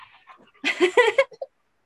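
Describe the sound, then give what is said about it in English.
A puppy named Loki whimpers: a quick string of short, whiny, high-pitched cries lasting about a second, fading into two brief final whines, with no one talking. “I suppose the puppy has definitely kept me busy.”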